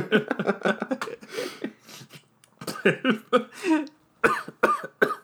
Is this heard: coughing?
yes